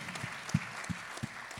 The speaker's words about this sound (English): If you're receiving it, give the Lord a hand clap. Dele a Dios un aplauso fuerte.